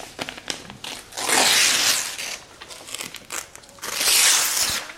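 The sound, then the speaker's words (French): A damaged sheet of paper is ripped apart in two long, loud tearing strokes, each preceded by softer crinkling and handling noises, with no voices. “La déchirer.”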